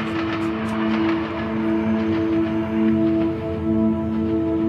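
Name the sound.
train passing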